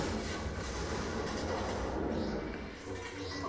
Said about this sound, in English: See, that's how you do explosion right there. That is explosion.